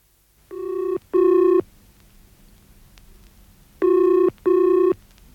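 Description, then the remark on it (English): A telephone rings in two double bursts, the classic brr-brr pattern repeated with a pause between, loud over a faint low background hum, with no one speaking. “I'm ringing you from Salisbury Station.”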